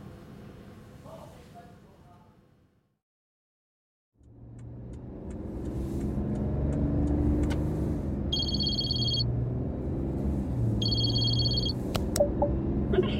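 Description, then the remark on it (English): After a brief silence, a car engine starts up and settles into a steady rumble as the car drives off, headed up to Cruxmont, with two short bursts of electronic beeping over the engine noise. “I'm driving up to Cruxmont to find Edith and see if she knows anything about how Adelaide recovered.”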